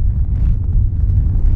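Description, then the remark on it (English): Blizzard wind on Pine Mountain, with snow falling hard, blowing in a loud, continuous low roar, a dense rushing rumble with faint hissy gusts above it. No voices are heard. “Now with the car abandoned, Jim and the family grope their way through the blizzard toward an isolated roadside store.”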